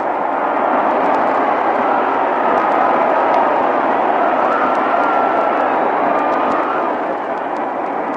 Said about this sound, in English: Well, every once in a while, we back away from this microphone here in our mutual broadcasting booth at Cincinnati to let you hear the crowd noise rather than to try to compete with it and talk over it.